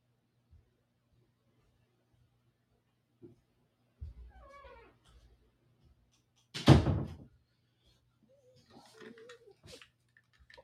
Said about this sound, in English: Oh my gosh, I gotta yell at the dog because he's crying for no reason.